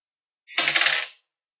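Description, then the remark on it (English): A die is dropped onto a table, picked up by a microphone, giving a brief bright clatter of rapid little bounces that rattle for about half a second before settling. No voices are heard. “Like, you dropped a die, and I can only hear it because your mic picked it up and put it through my headphones”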